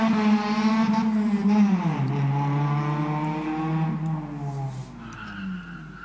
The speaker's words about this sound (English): Okay, that's just that's a motorbike noise.